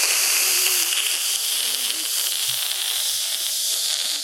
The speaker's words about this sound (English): I got to feed you water, so I'm going to take a little sip. Say something while I take my sip. I'm going to take a very long sip.